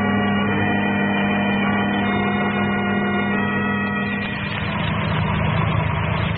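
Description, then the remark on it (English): A car engine idles steadily with a low, even rumble, then shifts and roughens slightly near the end as the car pulls over to the curb and eases to a stop. No one speaks. “The car was Herbert and the girls just pulling over to the curb, Dr.”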